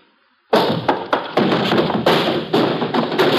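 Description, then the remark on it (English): A sudden heavy clatter breaks the silence, then a loud continuous rumble with irregular thuds and knocks as a wooden barrel is rolled along a hard warehouse floor and into someone. “Give me time to start that barrel rolling.”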